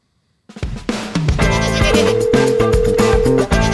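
A short, loud musical segment jingle with a goat bleat kicks in after a brief silence, with bright layered tones and a steady beat playing on without any talking.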